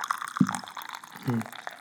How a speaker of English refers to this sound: Here, pour yourself a little bit of the tea. Go ahead and tea. Take a little sip.